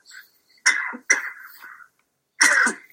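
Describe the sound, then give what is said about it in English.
Three harsh bursts of coughing and throat clearing from a person with a cold, the middle one dragging into a rasping clear, each separated by short pauses of silence with no talking. “I've been a cough and a bit of a cold, but I can just bring a bug on from school season with the kids at the minute.”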